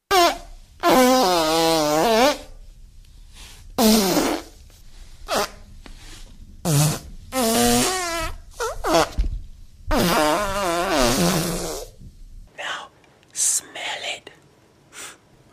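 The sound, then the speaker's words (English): A string of miked fart sounds made into a microphone as fart ASMR, some long and wavering, others short pops, repeating loudly with brief pauses and soft whispery rustles between, likely mouth-made imitations. “Hey guys, this is fart ASMR.”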